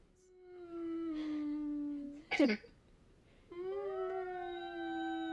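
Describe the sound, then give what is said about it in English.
A person imitates a whale call with two long, wavering hummed tones, the second rising in pitch, separated by a short burst of breathy sound; loud. “We're gonna end it with you going out with the whale, and we're going out.”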